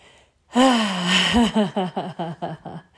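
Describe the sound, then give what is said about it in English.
A deep, audible breath, loud: a long voiced gasp that breaks into a rhythmic series of shorter, fading breathy pulses, with no talking. “Take a mindful moment and feel the breath you take.”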